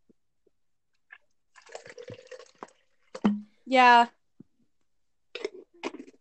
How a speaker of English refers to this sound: Hope you guys enjoyed that pouring water into another cup sound.